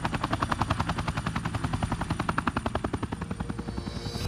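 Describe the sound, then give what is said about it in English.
A police helicopter's rotor thumps in a fast, steady rhythm, loud, with a broad engine roar underneath; the chopping pulses continue throughout without any voices. “Joey arrived just moments after a police helicopter touched down on the nearby beach.”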